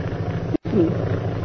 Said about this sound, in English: Sounding like aeroplane. Let me have a look out your window.